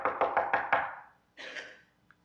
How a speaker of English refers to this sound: And you're sitting there one morning, having your morning cup of coffee, for those of us who drink coffee, or orange juice if you don't drink coffee, and you hear a knock on the door.